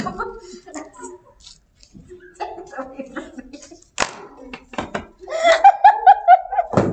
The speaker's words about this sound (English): As I slap my books together, I'm like, shit.